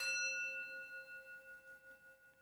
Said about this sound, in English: But before we get started, let's open up our sacred space by the ringing of our bell. Let me reach for it here. So we're going to ring our bell.